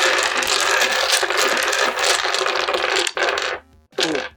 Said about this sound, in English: Oh, is that a dice bag made by our fan? Quality bag. Get that clickety clack out.